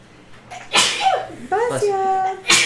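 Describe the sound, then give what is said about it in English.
A loud sneeze: a sharp explosive burst followed by a voiced, wavering wind-down, then another brief breathy blast at the end, with no words spoken. “Bless you.”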